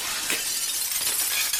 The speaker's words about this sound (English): As you approach the mirror and you put your face up next to it, it shatters.